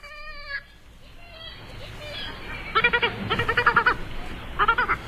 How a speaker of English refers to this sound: Our mystery bird is a medium-sized member of the gull family. It has a medium gray back, white head and underparts, black wingtips, and black legs. Unlike its red-legged cousin, it's often seen from land off both the east and west coasts of the U.S.